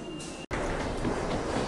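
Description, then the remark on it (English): Steady, loud rumble and hiss of a commuter train running without pause on a morning commute, broken only by a split-second dropout near the start; no voices come through. “And now I'm running for the train, because that's how you end a segment for your morning commute.”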